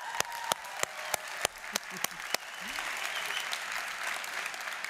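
Audience applause at Christ the King, given as another large round of applause, that opens with a handful of sharp, evenly spaced claps, then swells into a dense, steady patter of many hands clapping together at moderate volume.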